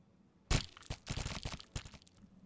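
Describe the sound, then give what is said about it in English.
A gory dice-roll sound effect from the bloody dice on D&D Beyond: a sudden loud wet crunch followed by a rapid string of squelchy, crackling bursts that fade out after about a second and a half. “It's my bloody dice on D&D Beyond.”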